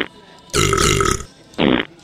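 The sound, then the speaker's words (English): A long, loud, reverberant burp rumbles for nearly a second, followed by a shorter second burp after a brief pause, both clear with no talking. “There's more reverb on the burps.”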